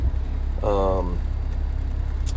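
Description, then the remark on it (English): A car engine idles with a low, steady rumble heard from inside the cabin, continuous throughout, while a brief voiced sound from a person rises over it near the start. “Just continuing on the podcast here, solo cast, like I said, doing a little throwback from the car.”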